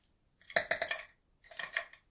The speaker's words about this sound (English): Put my pencil back.